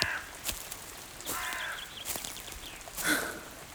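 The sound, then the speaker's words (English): A crow caws several times in a forest, in harsh, raspy bursts spaced a second or so apart, with a quiet background and a few faint rustles between calls. “Just a silly old crow.”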